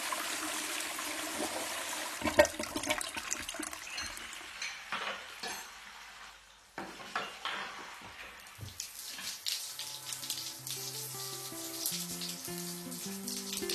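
A toilet flushes with a loud, rushing swirl of water for several seconds, gurgling down, before a light melodic tune of stepped electronic notes fades in over the fading water.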